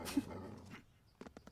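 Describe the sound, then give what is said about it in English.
A dog in a video game lets out a rough, noisy growl or snarl, followed by a brief pause and a few quick, sharp sounds close together. “That dog is sketching me out.”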